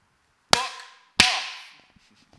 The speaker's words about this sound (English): I'm gonna do a clap now. One sec.